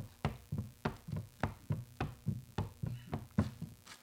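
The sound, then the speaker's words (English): Heavy footsteps thud overhead in a steady, even rhythm, roughly two per second, each a dull, bass-heavy impact. No voices are heard. “Did you hear that? It sounds like footsteps upstairs.”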